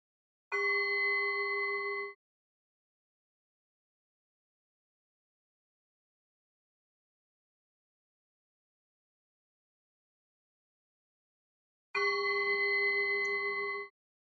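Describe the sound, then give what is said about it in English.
A meditation bell is struck twice to mark a relaxation session, each a clear, bright ringing tone lasting a couple of seconds, with a long stretch of silence between the two strikes. “This relaxation will begin with the sound of the bell and it'll finish with the sound of the bell.”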